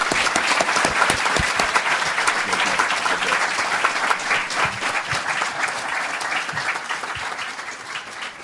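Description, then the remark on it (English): An audience breaks into sustained applause for the Prime Minister at the close of an event at CSIS, a dense, steady patter of many hands clapping at a fairly loud level that holds for several seconds before easing slightly toward the end. “And I'd like to close by starting with a round of applause again for our Prime Minister.”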